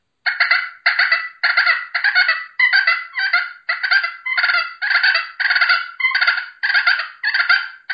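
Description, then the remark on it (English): Raspy, rattling turkey fighting purrs made by dragging the peg across the surface of a pot-and-peg call, about a dozen fast, loud bursts in a steady rhythm with short gaps between them and no talking. “You know, you can drag that peg on that surface and make that same kind of fighting purr sound, and I have seen it where it just turns a gobbler, you know, upside down when he hears that.”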